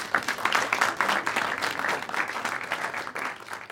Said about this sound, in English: I don't know, sound effect, applause.